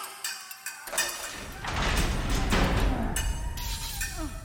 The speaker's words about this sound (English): Look, the doors. They open.